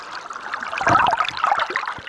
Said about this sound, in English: I made my way to St. Margaret's Bay. Heard the sound of waves sweeping over my underwater microphone.